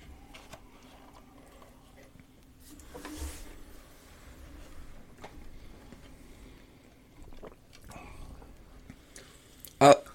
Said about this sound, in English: coughing again.